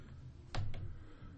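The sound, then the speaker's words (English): Two slow, separate key taps on a computer keyboard, one-finger typing while looking something up online, against a quiet low hum with no talking. “I cut typing class, so I got a one finger.”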